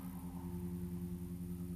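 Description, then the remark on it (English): A neighbor's car engine starts and hums low and steady, a constant idling rumble with no talking, at fairly low volume. “Just like you just heard that car start.”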